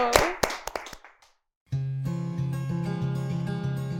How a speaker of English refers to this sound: Well, it's time. We're done. We've done it. So let's clap for ourselves, because we were great.